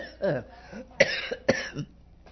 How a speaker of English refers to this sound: Gee, I'm going to try not to cough. I was starting out to say hello and instead.